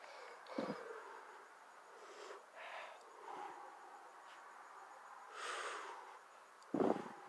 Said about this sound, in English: Now it's a ghost. Now it's a breath kind of thing, see? It's good for a change because people don't really need to talk. They just need to feel. So if we do this